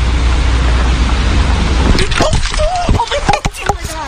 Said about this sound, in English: I just got hit by a car, but I'm okay